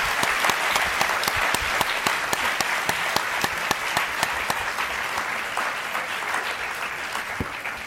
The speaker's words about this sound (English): Thank you very much. This was extremely enlightening, vivacious, sobering. I want to give a round of applause to our debaters for a really substantive debate.